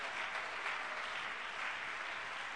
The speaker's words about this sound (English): Why don't you give him a good hand clap of praise right now? Hallelujah. Why don't you give him a good hand clap of praise?